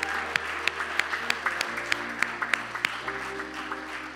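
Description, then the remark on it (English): An audience applauds steadily for several seconds, many hands clapping in a dense, even wash with a few sharper claps standing out, and a low sustained tone humming underneath. “Come on, let's give some people a round of applause today.”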